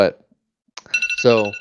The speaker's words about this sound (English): It came out about, I hear an alarm.